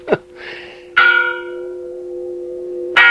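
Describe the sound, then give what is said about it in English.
Church bells ring out in loud, resonant strikes, each one blooming and humming on before the next peal lands, with no voices present. “People were summoned to church by bells.”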